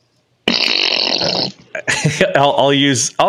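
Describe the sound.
A loud, raspy fart noise blasts for about a second, buzzy, followed by a short pause and then a voice speaking briefly.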